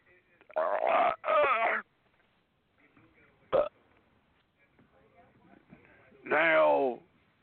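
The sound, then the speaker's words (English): Several loud, drawn-out burps: two back-to-back near the start, a short abrupt one midway, and a long croaking one near the end, with quiet gaps between. “Now the brain did a good burp.”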